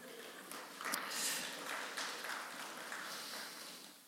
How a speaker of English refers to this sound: That was like the worst round of applause, but it's okay. I get it. It's a holiday weekend. It felt like I was playing golf, but thank you very much.